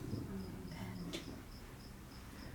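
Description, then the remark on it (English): Crickets chirp in a steady, evenly spaced rhythm against a quiet outdoor night ambience, with a low hum underneath and one brief click partway through. “Crickets.”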